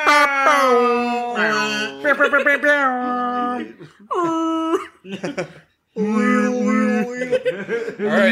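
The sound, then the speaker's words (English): Several people vocally mimic buzzer horns to herald an official announcement, with loud, overlapping, drawn-out honking tones in a series of bursts, some wavering or sliding in pitch, separated by short gaps. “We don't have any buzzers here, but we can all make buzzer noises.”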